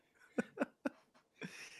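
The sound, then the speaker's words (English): A little dog barks three times in quick succession, then lets out a longer, rougher bark, all fairly faint, with no one talking. “That's why he's barking.”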